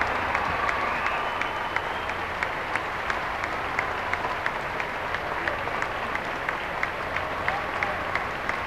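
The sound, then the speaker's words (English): Steady, dense applause from a crowd of about 2,400 faithful welcoming the Pope on a papal visit to the United States as he waves, with scattered cheers rising over the continuous clapping for the whole stretch, no speech cutting through. “He's waving to the crowd.”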